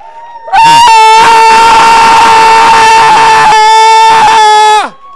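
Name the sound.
audience shouting in praise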